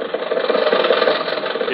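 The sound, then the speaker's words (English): An old car, bought around the time Roosevelt was elected, chugs along steadily in The Great Gildersleeve radio show, with a rough, rattling, mid-pitched drone that wavers slightly in loudness throughout, with no voices over it. “who did you buy this car from, Rochester?”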